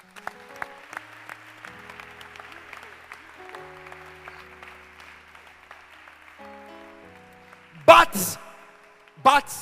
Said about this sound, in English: Can you please clap your hands again?